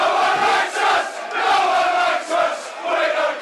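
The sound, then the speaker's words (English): A football crowd chants in loud, rhythmic surges, the massed voices swelling and dipping roughly every second with a broad, roaring tone. “Please do with these videos of crowd scenes.”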